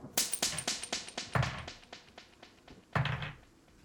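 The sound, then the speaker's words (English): A rapid series of sharp, loud knocks raps against a locked door, about a dozen hits in quick succession with two heavier thuds standing out, no voices; a magic knock spell cast by pointing a wand at the lock. “So you point your wand at the lock and a loud rapping noise rings out from the knock.”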